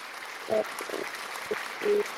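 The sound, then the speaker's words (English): A short burst of steady, hissy applause from a small group, with a few brief voiced whoops or murmurs popping up over the clapping. “A tasteful applause.”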